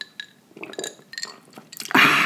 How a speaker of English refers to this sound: So you'll probably hear me slugging away during the podcast on my Magners.